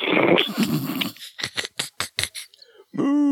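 A dog barks in a quick run of about five sharp yaps, close and fairly loud, following a rough, noisy rumble and ending with a brief tonal sound.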